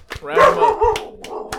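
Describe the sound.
A dog barks and yips: a drawn-out, whiny bark followed by a few shorter, quieter barks in quick succession, with voices in the background.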